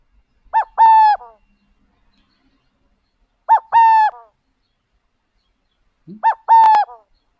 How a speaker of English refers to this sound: And this next one is a song by the subspecies, the Western burrowing owl.